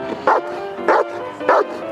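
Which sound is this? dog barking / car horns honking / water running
dog barking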